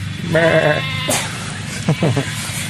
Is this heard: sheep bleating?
yes